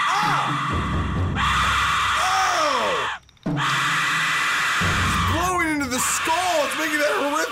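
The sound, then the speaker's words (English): An Aztec death whistle shrieks in loud, harsh, scream-like blasts with swooping rising and falling pitch glides, broken by one brief pause partway through. “Yeah, that sounds like a death whistle.”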